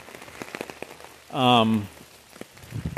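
Heavy rain patters steadily outdoors during a morning walk, with crisp drops tapping throughout, while a brief, loud, tonal vocal sound rises over it midway before the rain carries on alone.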